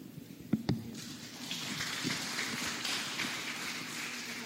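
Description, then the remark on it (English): A couple of sharp claps ring out, then an audience breaks into dense, steady applause that holds at an even level until the end, with no one speaking. “Please, the applause takes up the time of the people as questions, please.”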